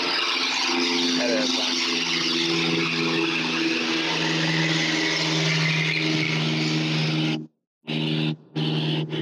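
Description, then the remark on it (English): A Super Cub light airplane drones overhead, its piston engine a steady, loud, buzzing hum with low harmonic tones, briefly cutting out twice near the end. “Sounded like maybe a Super Cub though.”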